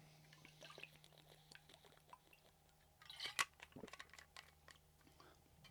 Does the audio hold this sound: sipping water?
yes